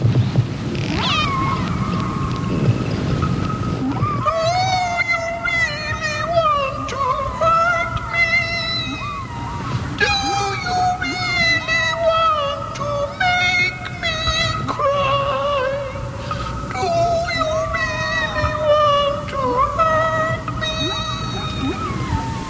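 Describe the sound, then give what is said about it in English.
Song of a whale recorded near the Queen Charlotte Islands: long, wavering moans and higher squeals with rich harmonics, sliding up and down in repeated phrases over a low, steady rumble. No one speaks. “Now, this is a whale we recorded near the Queen Charlotte Islands a couple of months ago.”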